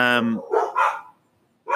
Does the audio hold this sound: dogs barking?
yes